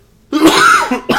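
A loud cough in two rough bursts from a person with a partial cold, the first longer and more drawn out, the second short, with no talking around it.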